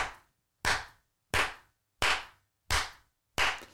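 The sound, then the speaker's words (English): A single person claps slowly and steadily, six crisp, fairly loud hand claps spaced evenly apart with brief silences between, with no talking. “Audience one clapping. It's not this sound.”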